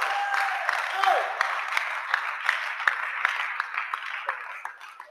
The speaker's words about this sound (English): The way you are clapping, I'm not sure you are in the house of living God.